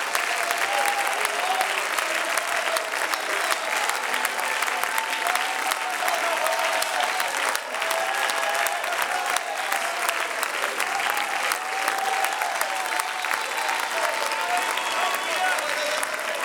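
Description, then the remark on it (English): A crowd standing in a building claps loudly and continuously to the Lord in rejoicing, a dense wash of many hands with no pauses, while voices murmur faintly underneath throughout. “And you need to clap your hands to the Lord.”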